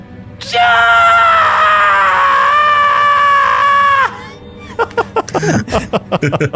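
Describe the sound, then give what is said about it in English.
A woman lets out a single loud, sustained, horrified shriek that holds steady for about three and a half seconds, piercing and unbroken, then cuts off as a person starts talking. “Honestly, it's an endless shriek.”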